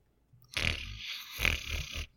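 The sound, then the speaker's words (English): A sleeping creature snores while still gripping on: two long, rasping breaths in a row, the second broken by a few fluttering pulses, fairly loud against an otherwise quiet background with no talking. “He's just snoring.”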